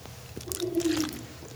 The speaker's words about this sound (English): Voice is getting raspy, so I may take a little sip of water once in a while.